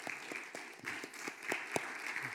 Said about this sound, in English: Before we go, can we just give a underloved department of our church, the sound and media team, a little bit of appreciation this morning? Just a little round of applause.